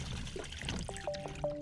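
Water pours and trickles steadily into a filling bath, a continuous splashing gurgle with faint ringing resonances near the end. No voices are heard.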